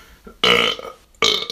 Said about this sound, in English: And I have to burp because I drank too much water.